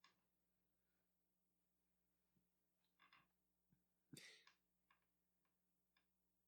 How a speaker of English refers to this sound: I hope the creaking of the coffee table isn't too loud, or the couch.